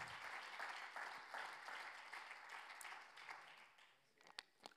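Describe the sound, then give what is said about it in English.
An audience claps together in a dense, steady wash of applause that gradually thins out, ending with a few scattered, sharper individual claps. “I like when y'all clap because then I can get me a drink.”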